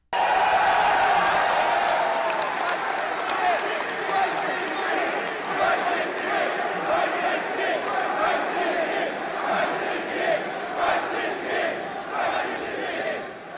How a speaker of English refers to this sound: What are they cheering? I can't understand. Christ is King. I think they're saying Christ is King.